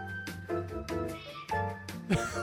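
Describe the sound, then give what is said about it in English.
A cat meows loudly and insistently in an attic, a series of drawn-out, wavering cries, with a bit of background music faintly underneath and no one speaking. “That is the actual cat in real time.”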